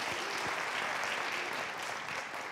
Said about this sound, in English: give yourself a hand clap for doing an amazing job on that last one.